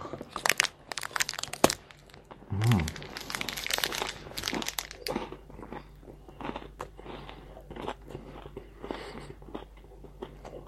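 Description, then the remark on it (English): Someone eats a Lion chocolate bar: a crinkle of wrapper, then crisp bites and steady crunching, chewing sounds over several seconds with no talking. “And I'm gonna eat.”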